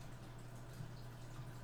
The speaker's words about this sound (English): You should hear running water because that's my aquarium going.